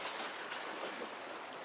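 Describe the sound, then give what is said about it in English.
A steady, full wash of ocean surf, like waves breaking and rolling up the shore, heard alone with no voices and an even, unbroken hiss throughout. “You're walking the shore, listening to the waves rolling in, going out, in and out, in and out, feeling the water brush against your feet”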